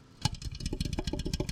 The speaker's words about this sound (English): You hear the bubbles. Do you hear the little bubbles?